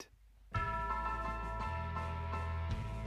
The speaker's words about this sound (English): Wow, you hear that death toll, that tolling, chiming sound?